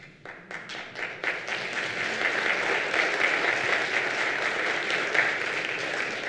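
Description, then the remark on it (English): An audience at a church service at Asbury breaks into applause, starting with a few scattered claps that quickly swell into steady, dense clapping from many hands, sustained at an even loudness to the end. “Are you all clapping because it's over?”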